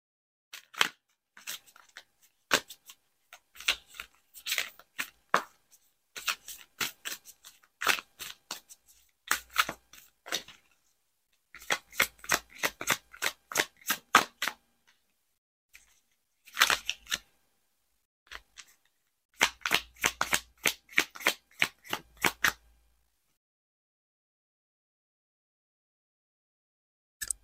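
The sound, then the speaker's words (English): A deck of tarot cards is shuffled, with crisp, rapid papery clicks and riffles arriving in several bursts separated by short pauses. No one speaks. “Okay, I'm gonna put my mic down while I shuffle.”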